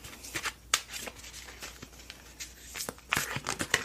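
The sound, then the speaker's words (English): Tarot cards being shuffled lightly: a quiet run of soft, papery riffles and flicks with a few sharper snaps, irregular in rhythm, with no one speaking. “Just shuffle them lightly.”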